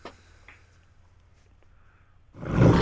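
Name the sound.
lion roar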